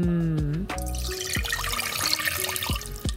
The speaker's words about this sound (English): This is my favorite part. Now I'm going to pour the syrup over the bread and raisins.